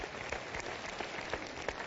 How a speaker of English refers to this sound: How much you love that? Amen. You can clap. That's great.